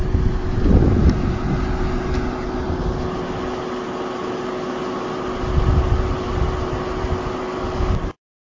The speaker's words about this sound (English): In a helicopter. Okay, so here we are.